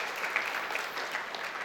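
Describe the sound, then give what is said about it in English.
A church audience gives God a round of applause, a dense, steady wash of many hands clapping at once, sustained and fairly even throughout, with no voices standing out above it. “Let's give God a round of applause for opening up our hearts and minds to do that.”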